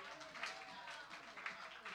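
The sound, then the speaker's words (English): A seated church audience claps for the Lord after a prayer, in a steady, dense wash of hand clapping, with a murmur of voices mixed underneath throughout. “Give the Lord a hand clap as you're seated.”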